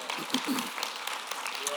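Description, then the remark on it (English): A church audience claps hands to the Lord in a steady, dense wash of applause, with scattered cheers and voices rising within it throughout the short stretch. “Someone clap your hands one more time to the Lord.”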